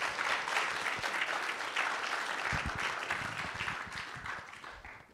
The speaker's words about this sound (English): We could give the worship team a better clap than that, couldn't we? Yes.